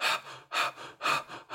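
A person breathes in rapid, panicked gasps, about three sharp bursts in under two seconds, fairly loud, with no talking, imitating hyperventilation to demonstrate a very unhealthy way of breathing that can induce anxiety and panic.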